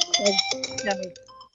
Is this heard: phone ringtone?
yes